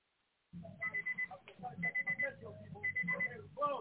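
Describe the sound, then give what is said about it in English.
An alarm rings in the background of a caller's phone call to a live call-in broadcast, in rapid, repeating bursts of shrill electronic beeps grouped in quick clusters. It comes through fairly clearly over a muffled line, with a voice talking underneath it. “We can hear you and your alarm in the background, caller.”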